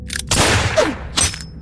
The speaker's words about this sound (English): I take out my gun and shoot the window, but when the bullet strikes the glass, all I hear is a high-pitched sound, and then the bullet dropping to the floor.